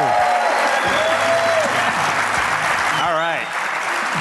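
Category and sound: crowd, audience applause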